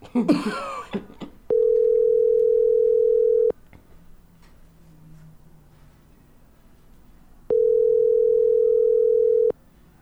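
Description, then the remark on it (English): A telephone ringback tone purrs twice while calling a contest contestant, each steady two-second burst followed by a long silent gap, heard clearly after a brief cough or throat-clearing at the start. “He better answer the phone.”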